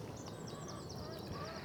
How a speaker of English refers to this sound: And the chickens have been watching me through the glass, getting very annoyed that I haven't been to feed them yet. So I think that's the first thing I should do.